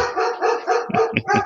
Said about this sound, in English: Yeah, sorry, the dog's barking. He found people coming.